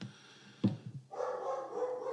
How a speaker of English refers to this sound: Meanwhile, the elongated dog is barking in the background. Yes, he is.